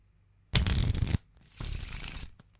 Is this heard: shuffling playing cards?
yes